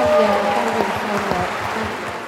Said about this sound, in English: And can we just have another round of applause for these real life superheroes?